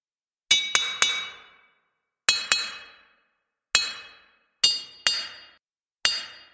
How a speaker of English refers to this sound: From inside the city, every once in a while you will hear a loud clicking sound. And they come in a couple different tones. And it sounds like a rock hitting something.